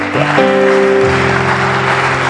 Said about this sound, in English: I thought you would clap at least.